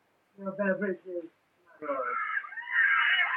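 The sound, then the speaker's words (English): A child's high, strained cries: a couple of short wavering wails, a brief pause, then a rising shrill scream that grows louder and holds to the end. “Kid screaming in the background.”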